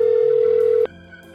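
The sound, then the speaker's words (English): A steady electronic ringback tone over a phone line as someone calls a number from a phone book, one sustained burst that cuts off abruptly with a click, leaving quiet line hiss with no one picking up. “Well, that's a lot of ringing. No answers.”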